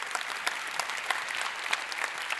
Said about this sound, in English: And now we're up to 45 applications of new ministries. Can we give a cheer for that? How cool is that?